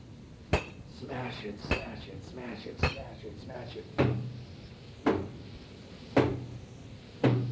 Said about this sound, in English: This is experimental music. I'm smashing up my book with a blue hand made of glass.